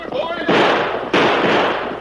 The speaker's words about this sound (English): Keep on shooting!